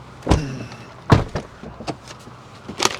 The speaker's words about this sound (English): Seems I left the car running that whole time. I was going to say, the car was running.